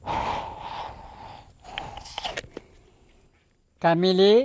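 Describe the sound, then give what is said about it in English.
Breathy huffs and puffs of air blown in short uneven bursts as a local magician breathes into a bottle of water to bless it, in a rickety wooden house on stilts, followed by a brief voiced sound at the end. “He's breathing into the water.”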